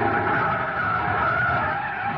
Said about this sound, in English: Jam on the brakes.